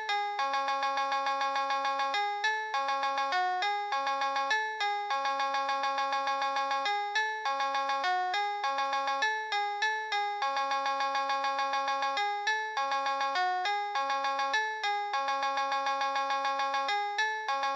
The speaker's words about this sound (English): I wonder what a polyphonic ringtone version of … … would sound like